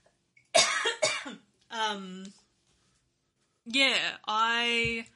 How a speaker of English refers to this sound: Excuse me, I need to cough.